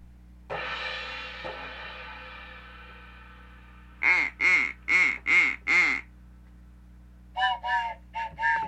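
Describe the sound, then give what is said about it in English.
After a long fading tone, a loud duck quacking sound effect from a phone quacks five times in quick succession, pauses, then quacks three or four more times. The quacks are clear, with no talking. “Oh, it's my phone effect.”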